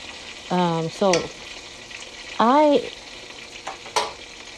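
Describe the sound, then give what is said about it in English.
Food sizzles in a pan as dinner is being cooked, with a steady, bright hiss that runs throughout, broken by a few short tonal voice-like bursts and a couple of sharp clicks. “Y'all hear me. I'm cooking right now.”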